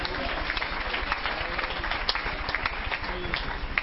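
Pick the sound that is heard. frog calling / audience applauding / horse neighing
audience applauding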